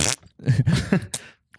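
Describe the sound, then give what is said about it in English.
A voice imitates a fart, a few buzzy, sputtering low bursts strung together after a short breathy hiss, ending with a faint puff. “It's a pretty good fart noise, dude.”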